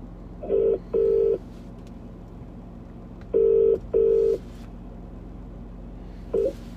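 An outgoing phone call's ringing tone: paired electronic burrs repeating about every three seconds, clear and steady over a faint line hum, with a third ring just starting at the end.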